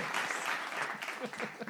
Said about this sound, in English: Thank you, studio audience, for clapping for us out there.